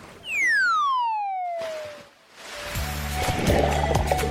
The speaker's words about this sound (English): there was a few splashes going on